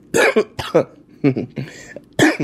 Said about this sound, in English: actually, by the way, I just had to pause to cough.